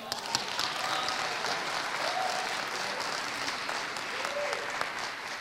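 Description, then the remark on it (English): Steady audience applause, a round of applause for Jesus, a dense continuous patter of many hands clapping at even loudness for several seconds, with faint cheers or whoops rising briefly above it. “I think that needs another round of applause for Jesus.”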